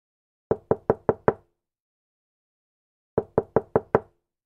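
knocking on a door

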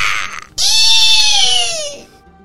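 blood-curdling scream

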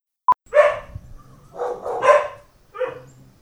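dogs barking

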